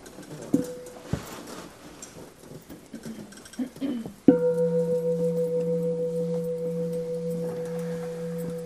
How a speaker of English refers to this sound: And let's begin with the bell.